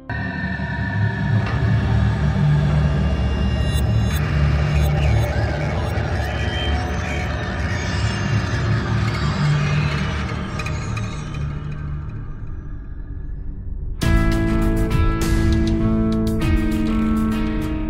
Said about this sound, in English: 2:17 a.m., the bridge is lowered, and traffic begins to continue its journey across.